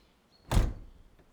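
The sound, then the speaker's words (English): A studio door is slammed shut once, a single heavy thud with a booming low end that fades quickly into quiet. No one speaks. “Trotting up through the narrow track banked by sandstone and outcrops of wild and flowering rhododendrons, I reach peak windmill and run through the overgrown glade of yet more bracken to the safety of my studio, slamming the door.”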